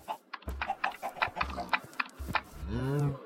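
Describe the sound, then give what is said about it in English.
A Minecraft pig oinks, a drawn-out, tonal grunt near the end, after a run of quick, rhythmic clicking sounds. No one speaks. “I'm debating using my one cheat to name a pig Reuben.”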